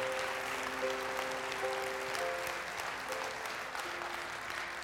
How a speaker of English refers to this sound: Come on and give him a hand clap of praise in this house today.